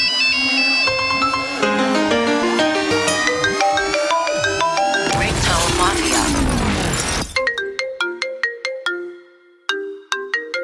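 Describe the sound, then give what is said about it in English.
A remixed Nokia ringtone melody plays loud: bright layered electronic notes, a swelling noisy sweep in the middle, then a run of crisp, staccato plinking tones with short gaps. “Nokia Ringtone REMIX”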